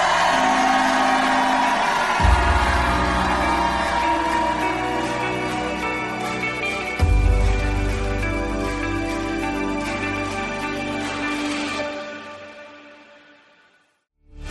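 A large Christian audience jumps up and shouts and cheers loudly and continuously, with heavy low thuds of jumping at a couple of moments, before the whole din fades away toward the end.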